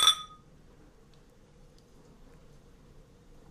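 A single bright clink of glasses of American Imperial Stout with espresso, raised in a toast, rings out sharply at the start and fades within a moment, leaving only a low, quiet room hum with no one speaking.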